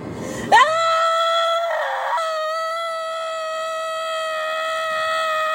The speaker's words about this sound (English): Screaming on the highway helps them too. Oh, I do love to do that! That scream.